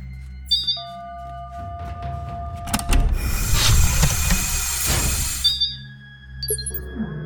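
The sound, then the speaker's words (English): An airlock door closing on Venus as a suited person goes outside: a few electronic beeps, then a loud mechanical whir and rushing hiss lasting a few seconds as it seals, followed by more beeping tones. No voices. “The door shut, and I prepared the robotic arm as I waited for him to get outside.”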